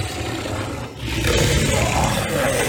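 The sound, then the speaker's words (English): A sound effect of orcs: loud, guttural roars and snarls overlap in a dense, continuous growling din, dipping briefly before surging back even louder and rougher, with no voices speaking. “They're snarling and roaring and just generally making a nuisance.”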